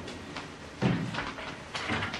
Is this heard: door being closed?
yes